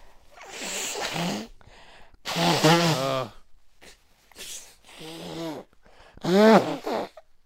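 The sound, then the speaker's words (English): Several forceful nose blows in a row by someone with a clogged nose, each a honking, wheezy burst of about a second with a strained pitch that rises and falls, separated by brief pauses. “I gotta blow my nose. All right, well, go ahead, blow it.”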